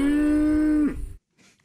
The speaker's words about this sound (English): Is that cows in a field?